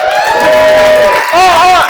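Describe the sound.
An audience responds to a host's call to applaud, reacting loudly for about two seconds, a dense wash of applause mixed with rising and falling cheers and whoops from many voices, steady throughout with a brief dip in the middle.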